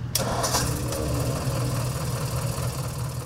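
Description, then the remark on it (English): A 1964 Ford 4000 tractor engine idles steadily in Missouri, a low rumbling chug with a brief clatter at the start, running continuously without any voices. “This week, we're Missouri bound to learn about a 1964 Ford 4000.”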